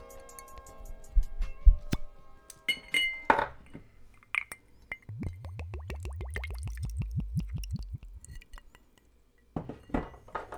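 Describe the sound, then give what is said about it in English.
Glass clinks and a sharp cork pop from a 93-proof bottle bottled on 11/19/19, then a steady run of rhythmic glugs as a double is poured, the gurgling rising in pitch, followed by a few more clinks. “So let's hear this pop sound, the best sound.”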